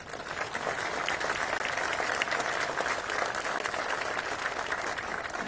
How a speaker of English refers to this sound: I want to thank as well my incredible staff at the Department of City Development. I was asked earlier, and you know what? How about an applause break for them?